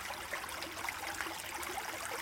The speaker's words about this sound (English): The colors seem to have a shimmering look to them, caused by the water droplets that splash occasionally onto the rocky surface.